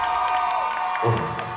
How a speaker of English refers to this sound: All right, I want you to scream as loud as you can.